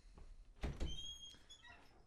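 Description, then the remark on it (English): A door is opened to let a cat in: two quick, solid thuds of the latch and frame, followed by a thin, high squeak of hinges. No one speaks. “Should we let her in?”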